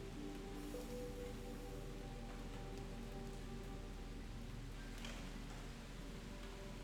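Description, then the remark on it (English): Steady, soft rainfall patters continuously on a surface, a gentle even hiss with scattered droplet taps and no voices, consistent throughout. “As the raindrop descended, the gentle pitter-patter of rain filled the air.”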